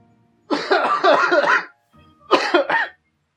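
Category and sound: human body sound, coughing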